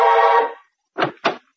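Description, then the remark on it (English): An apartment door buzzer gives a loud, harsh, steady buzz lasting about half a second, then after a pause come two short, rougher bursts in quick succession. No one speaks. “Just as I was puttering around getting ready, the apartment buzzer buzzed.”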